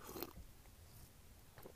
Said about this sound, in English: I'm gonna slurp again.